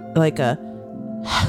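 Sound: voice imitating heavy breathing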